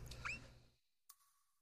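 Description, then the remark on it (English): A short, sharp squeak with a quick bending pitch over a low rumble, then quiet before a faint click and a thin lingering tone. “What was that? It sounded like a squeak.”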